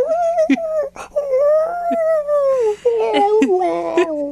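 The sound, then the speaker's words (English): A person imitates the screaming, singing howl of their oldest dog: a sustained, wavering, high-pitched vocal wail that rises and dips for several seconds, fairly loud, broken by brief clicks and breaths. “Our dog is the biggest, our oldest dog is the biggest screamer. He sings.”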